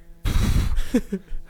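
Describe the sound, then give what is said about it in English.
A deer snort-wheeze blown on a hunting call: one harsh, breathy blast of air lasting about half a second, then two short, higher wheezy puffs trailing off. No talking. “No, it's an actual like snort wheeze call.”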